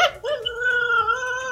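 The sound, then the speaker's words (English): A dog whines in a long, high, wavering tone that holds steady after a short sharp onset, fairly loud, with a slightly thin, transmitted quality, heard over a video chat with its owner, a nurse. “She video chats, and his little voice just melting talking to her.”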